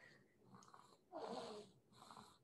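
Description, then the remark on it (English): Soft, raspy breathing sounds from a baby girl snoring, with three gentle rising-and-falling breaths, the middle one slightly louder and wheezier. “She's snoring.”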